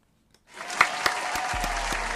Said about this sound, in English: You guys get the claps, 110%. And the air ones, of course.